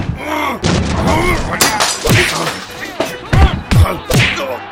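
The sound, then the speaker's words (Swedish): A wild fistfight inside a guard booth: repeated blows and heavy thuds land in quick, uneven succession, several sharp, loud whacks amid grunting vocal noises. “Titta, det är vilt slagsmål där inne.”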